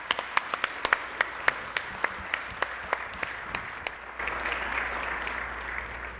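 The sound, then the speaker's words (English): An audience applauds to thank the people involved in a ministry: sharp individual claps stand out over a dense, steady patter of many hands, and the clapping thickens and grows fuller toward the end. “But would you join me in a round of applause of just thanking these people?”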